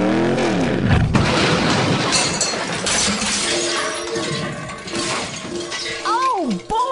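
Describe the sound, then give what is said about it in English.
A van crashes with a loud, sustained burst of smashing and shattering glass, followed by rattling debris. Voices are heard through the wreckage noise. “I seem to have crashed your van again.”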